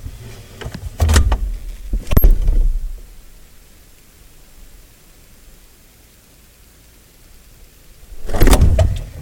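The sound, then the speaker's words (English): A fridge door swings and shuts with a clunk, followed by a sharp click of a camera flash going off inside the fridge, then the flash recharging with a long quiet hum before another burst of handling noise at the end. “So you'll hear the door closing, and then you'll hear the lovely sound of a flash going off and recharging.”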